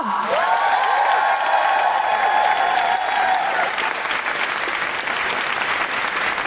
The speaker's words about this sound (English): Warm, guilty feminist Amnesty International applause going for the fantastic Paul Sinha!